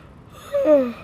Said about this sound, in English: And if you cannot tell by that yawn, I am exhausted.